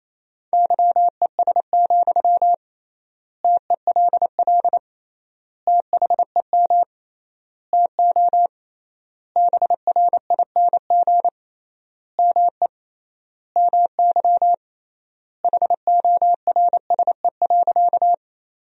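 Morse code at 28 words per minute with triple word spacing, sending a sentence made from the top 500 words: a single steady mid-pitched tone keyed on and off in quick dots and dashes, grouped into words separated by clear pauses, with no voices.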